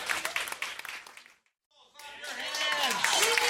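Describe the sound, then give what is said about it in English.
An audience at a live show gives a round of applause for the round-two competitors, clapping in a dense, steady burst that fades to near silence after about a second and a half, then voices start up loudly, with what sounds like cheering. “Let me big round of applause for round two competitors.”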